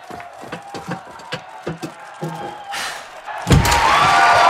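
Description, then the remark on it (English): A series of dull thumps and knocks gives way to a rally crowd bursting into loud, sustained cheering that swells and holds through the final second. “Bueno, my crowd awaits.”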